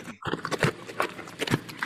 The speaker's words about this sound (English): That's a bear licking.